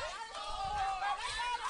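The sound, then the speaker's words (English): A steady wash of crowd noise and overlapping chatter at a night baseball game, the crowd and both dugouts blending into a lively hubbub with a few shouted calls rising above it, at a constant, moderately loud level throughout. “As you can hear, lively night out here at the ballpark. You can hear the crowd, the dugouts, both into this game for good reason.”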